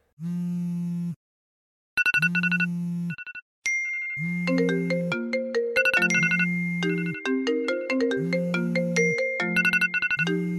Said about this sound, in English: So, it's noon. And I get up and I shower and I'm getting a lot of notifications on my phone for some reason.